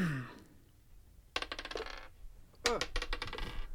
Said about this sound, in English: And you guys both give me perception checks. So roll me a d20 plus your perception.